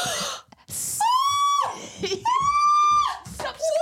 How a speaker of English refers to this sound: Stop screaming. Sorry. What the hell? Mate. What are you screaming?